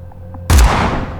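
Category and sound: sound effect, shotgun blast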